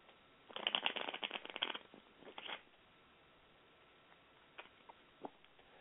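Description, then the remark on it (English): A deck of playing cards is riffled in a quick, rattling burst lasting about a second, followed by a short second flutter and a few soft isolated taps, fairly quiet with no talking. “Oh, my shuffle had a little hitch in its giddy-up.”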